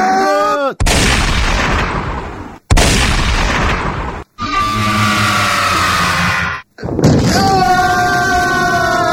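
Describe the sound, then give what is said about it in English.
Loud shotgun blasts from both barrels, fired at close range by a passenger in a motorcycle sidecar at a koala, ring out in quick succession. Each burst trails into a harsh roar before cutting off, with brief gaps between the thunderous bangs. “One of the passengers shot the koala in the face from close range with both barrels of what appeared to be a shotgun”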